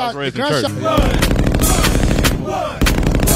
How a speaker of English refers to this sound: Gunshots. So loud on the record, it hits the compressor and makes the song go down.